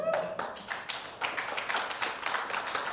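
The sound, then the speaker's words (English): An audience claps steadily, many hands producing a dense patter of sharp claps that continues evenly for a few seconds, moderately loud, with no talking over it. “Thank you for the people that persevered with the clapping so the reluctant people could join in later.”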